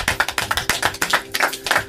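An audience applauding, many hands clapping in a dense, steady patter of sharp overlapping claps that keeps up throughout, fairly loud, with no voices.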